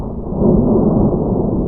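A deep, heavy rumble of thunder from an approaching storm rolls on steadily, loud and low-pitched, swelling slightly after a moment and lingering without any voices.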